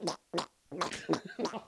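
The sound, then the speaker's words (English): A person blows several wet, sputtering raspberry bursts with the mouth, imitating a friend's farts in a quick irregular series of five, fairly loud. “I'm gonna fucking puke because that's a good impression of your old farts.”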